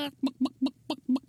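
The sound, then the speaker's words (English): A voice imitates a chicken clucking in a quick run of about six short, rhythmic clucks, fairly loud, with no other talking. “You haven't seen any extra chickens running around, have you?”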